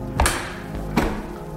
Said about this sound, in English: There was a push on the door, and a slam. Huh? Anybody in there? I held my breath, and the thing outside started pulling the door off of its hinges.